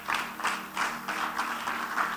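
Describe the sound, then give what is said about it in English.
An audience applauds with a steady, dense patter of many hands, swelling in soft rhythmic waves at moderate volume, with no voices over it. “I thought you were clapping.”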